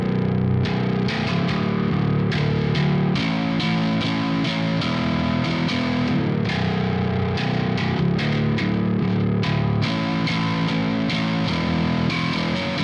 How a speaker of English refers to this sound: send it through a guitar plugin, and I send it through the Neural DSP archetype Nolly. And I think it was the first setting that I pulled up, just sounded awesome, and so I just kept it.